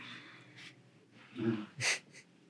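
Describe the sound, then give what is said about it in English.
A drawn-out, breathy yawn swells, ending in a brief airy exhale, with faint low murmuring in the background. “…, you're yawning.”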